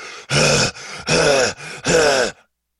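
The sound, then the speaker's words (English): A man imitates strained exertion as if doing push-ups: three loud, drawn-out groaning grunts alternating with quicker breathy inhales, rhythmic, before it cuts to silence. “It would be a lot of heavy breath, heavy breathing and me.”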